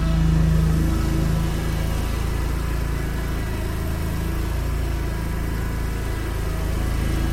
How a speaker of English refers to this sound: He's taking off the backpack, and now we're starting up the lawnmower. Okay. Oh, God. One noise for another.